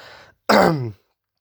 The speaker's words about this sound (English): Sorry for the cough.